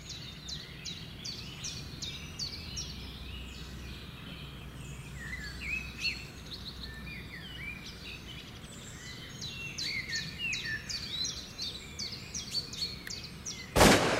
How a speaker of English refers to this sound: The next one is the sounds of morning birds chirping.